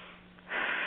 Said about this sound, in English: And at the same time, paying attention to your breathing, just being appreciative of that breath of yours, and having an awareness of it. Just breathing. Breathing in and breathing out.